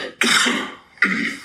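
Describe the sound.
A voice imitates the cough of the speaker's mother, heard in a Target store: two loud coughs, each a sharp burst at onset that trails off, the second following after a brief pause, with no other talking.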